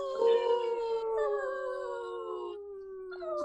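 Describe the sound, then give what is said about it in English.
Several community members imitate wolf howls together over their microphones, long sustained wavering tones sliding slowly downward in pitch, fairly loud, with a brief new howl rising at the end. “So fellow leading members, go ahead, gently unmute your microphones and let's make some more wolf howls and send some love to all the people out there.”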